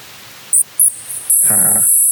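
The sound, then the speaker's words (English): Underwater acoustic modem signal from a submersible: two short, shrill electronic chirps, then a sustained high whine with a brief warbling burst beneath it, heard over steady hiss with no talking. “That is the acoustic modem on the limiting factor.”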